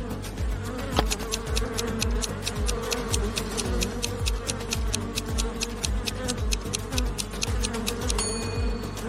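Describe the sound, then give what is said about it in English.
A dense, angry swarm of bees buzzes loudly and continuously, a thick agitated drone with rapid, regular clicking ticks running over it throughout. “What do you think is more dangerous in this situation? A bear or a swarm of bees?”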